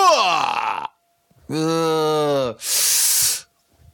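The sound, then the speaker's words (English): Beatboxing from a rap record: three loud, separate mouth sounds, a falling whooping tone, a steady low buzzing drone, then a sharp airy hiss, with short pauses between and no talking. “He rocks the crowd on a DMX when he's on a beatbox. He cannot miss. So listen to the beat when he rocks like this.”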